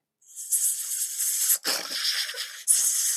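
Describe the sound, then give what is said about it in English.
A person imitates the hissing sound snakes make while sleeping, with three breathy, sustained hissing bursts in a row, fairly loud, the middle one slightly raspier. “And I mean, they don't snore. They do this like cute little hissing sort of thing.”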